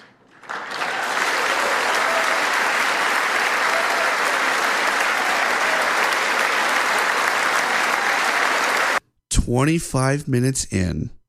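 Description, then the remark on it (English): Sustained, steady applause from a large crowd in a congressional chamber, with Nancy Pelosi among those clapping, fills about nine seconds at a loud, even level, then cuts off abruptly and a man begins speaking. “And Nancy Pelosi finally claps for that.”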